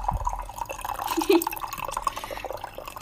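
Water trickles and drips steadily into a glass in a kitchen, a continuous liquid burble with small splashy spikes, fairly quiet and with no voices.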